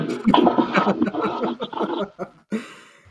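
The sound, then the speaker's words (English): A toilet flushes on its own, with gurgling, churning water for a couple of seconds, then a brief lull before a fresh burst of bright, hissing rush. “My toilet is automatically flushing.”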